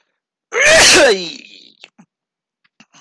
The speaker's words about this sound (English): It's an interesting thing because, oh, I think I'm going to sneeze. Hang on.